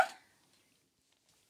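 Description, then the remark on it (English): One sharp, breathy sneeze, brought on by grass pollen, bursts out at the very start and fades within a fraction of a second, leaving near silence with only faint rustles afterward. “Oh, I'm going to sneeze.”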